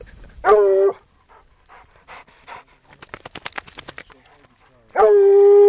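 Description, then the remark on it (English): A state trapper's two hounds pant quickly and rhythmically, with two loud, drawn-out baying barks, one near the start and another at the end, in the Black Hills during a search for a lion. “With her are a state trapper and his two hounds, a state biologist, and her professor”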